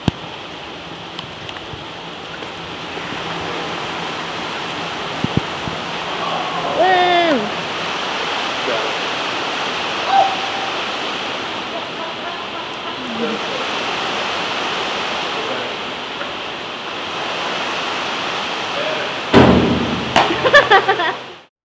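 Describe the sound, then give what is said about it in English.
A steady, dense hiss of rain falls outdoors for the whole stretch, broad and even, with a few faint chirps and brief knocks and a louder clatter near the end. “It is raining, so.”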